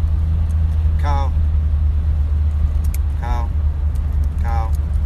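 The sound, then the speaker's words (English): A truck drives along a foggy road in a steady, loud, low drone that fills the whole clip, with three brief high-pitched vocal squeaks breaking in over it. “About to get smashed by that truck.”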